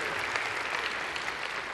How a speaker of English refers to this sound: You can clap. That's all right, because there's some here today.